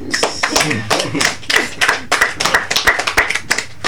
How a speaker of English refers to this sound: Y'all, hold on. First of all, before I go on, but can I get a round of applause for how good I read?